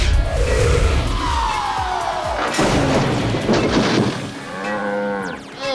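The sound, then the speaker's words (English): A loud crash and clatter of breaking wood as a train, Mighty Mila, smashes through a fence, followed by a cow's long, drawn-out moo, prominent, with rumbling noise underneath. “Sorry about that, Mr. Cow. I'm gonna fix that fence just as soon as I stop this train that's also Mighty Mila!”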